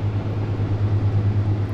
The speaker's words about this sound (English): I was gonna wait for all these boats to go by, but there's a dick load of boats, so let's just power through, shall we?